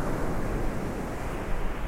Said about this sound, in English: But the sea always sounds the same, I told her. A wave comes in. And it rolls out. It comes in. It rolls out.